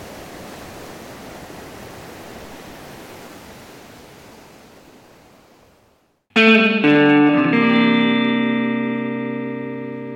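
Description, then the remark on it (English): Steady rushing wash of sea waves at the shoreline, loud, slowly fading away before a bright, sustained ringing chord abruptly takes over. No one speaks. “So I'm going to continue wandering up and down the sea line and continue to paddle.”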